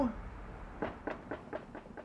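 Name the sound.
banging on a door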